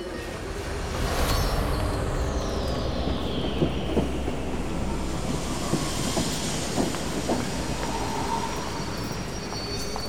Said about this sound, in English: Right, good. Here's your train.